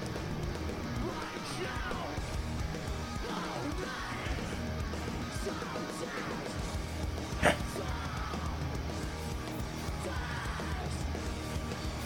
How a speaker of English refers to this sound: See, the thing is, enough people know the lyrics that you can hear them yelling. They're just not as amped, I guess.